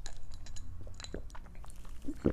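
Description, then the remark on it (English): A quiet sip of lemonade, with small wet mouth clicks and a brief slurp and swallow near the end; nobody speaks. “I'm just trying to think of the measurement of the state if I take a sip of lemonade.”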